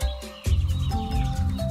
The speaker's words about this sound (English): The San Diego Zoo recently opened Hummingbird Habitat. With a cacophony of calls and a whirling of wings, you can experience 40 different species of birds, including the Anas, Costas, and Emerald hummingbirds.